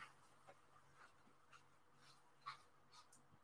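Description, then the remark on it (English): A female dog with allergies makes soft, repeated snuffling and whimpering noises after waking up, short breathy bursts coming roughly every half second, faint, with no one talking. “Just checking on my dog. She's got allergies.”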